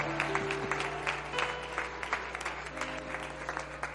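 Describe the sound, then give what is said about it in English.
An audience at a worship service claps their hands to the Lord in a dense, steady round of applause, with a sustained low hum of tones underneath and no talking. “Clap your hands to the Lord and welcome his presence into this place.”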